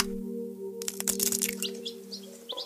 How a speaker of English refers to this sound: Gallina, gallina, won't you cluck right out loud? Cluck, cluck, cluck, cluck.